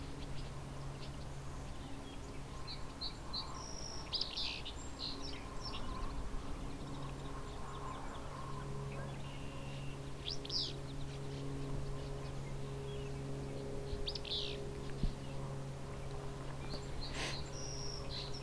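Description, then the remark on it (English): Barn swallows calling as they fly past: scattered bursts of quick, high twittering chirps come and go over a steady low droning hum, with a few louder call clusters standing out. “There's also some barn swallows going by here.”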